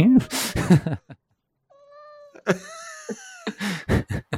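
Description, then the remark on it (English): A female pet cat meows repeatedly in drawn-out, wavering cries, some rising into a whiny caterwaul, with a brief quiet gap midway; fairly loud, with no one talking. “This is my cat when she knows we're about to get into a conspiracy. This is what she sounds like.”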